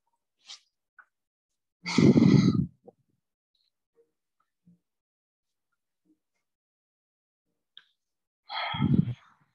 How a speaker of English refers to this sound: Keep breathing deep. Keep breathing loud. One more inhale.